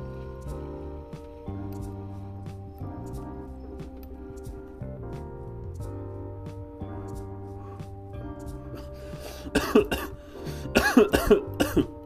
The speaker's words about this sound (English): It was actually really good. But the cough ruined it, kind of.